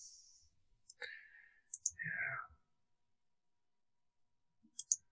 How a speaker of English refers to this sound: Sorry. Now I've just gotten us clicking away on these pictures.